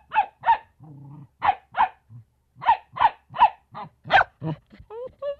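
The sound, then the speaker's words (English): Dogs, one of them a puppy, bark in quick, loud bursts, a low rumbling growl slipping in between the sharp barks, with a few higher, whiny yips near the end. “this is our new co-host. This puppy here.”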